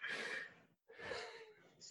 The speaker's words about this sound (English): Oh, Jesus. Sorry, I was yawning there again.